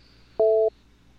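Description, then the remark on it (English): A single short electronic telephone tone from a phone dialing out to a caller during a live on-air broadcast, a steady two-pitch beep lasting about a third of a second, loud and clear over a quiet background hum. “You can hear me dialing out here.”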